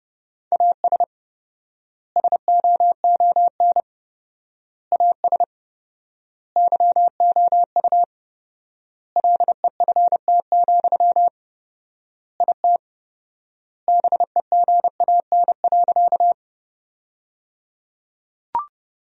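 A steady, single-pitched beeping tone keys Morse code at 30 words per minute in rapid bursts of dots and dashes, sending sentences built from the top 400 words, with four-times word spacing leaving long silent gaps between word groups, and no voices.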